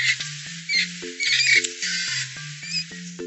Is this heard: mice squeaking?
yes